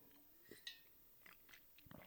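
Someone takes a drink of water: a few soft, irregular gulps and wet mouth clicks, quiet and unaccompanied by talk, with a brief sharper tap partway through.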